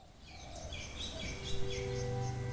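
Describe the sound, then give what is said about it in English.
Birds sing in the bush within the 20 acres of Kawe Purapura, a run of repeated high chirping phrases over a low, steady outdoor hum, with no voices. “Inside the 20 acres of Kawe Purapura, though, there's still bush and birds and the ghosts of Centrepoint.”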